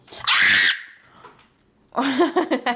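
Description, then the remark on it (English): A person lets out a sudden, loud, shrill scream lasting about half a second, then after a short pause, more vocalizing follows. “That I scream now.”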